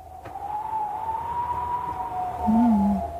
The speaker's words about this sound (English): All right, so it starts out with wind.